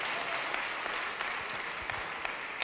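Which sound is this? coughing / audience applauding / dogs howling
audience applauding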